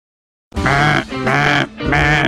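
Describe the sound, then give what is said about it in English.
A cheap duck call blown three times in quick succession, each loud, buzzy, nasal honk lasting about half a second, sounding almost like a bleating goat, with no voices. “Well, that was my flashing me, or a really cheap duck call that I need to return anyway.”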